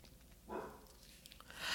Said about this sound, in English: And if you hear a dog in the back, I apologize. I think he hears other dogs around and maybe barking because of that.